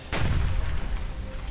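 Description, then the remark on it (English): A loud explosion erupts with a sudden, sharp blast, then a deep rumbling roar that lingers heavily in the low end for over a second, with no voices. “Explosions rocket across the screen.”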